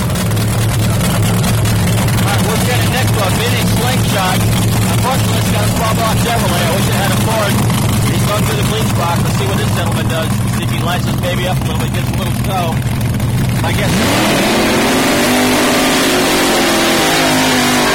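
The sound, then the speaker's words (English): Loud drag racing engines, including an old vintage funny car, rumble at a heavy, steady idle as the cars get ready to stage at a drag race, then near the end one revs sharply upward into a rising roar, powerful, with faint voices in the background. “We had an old vintage funny car right next to that guy, so they're both getting ready to stage.”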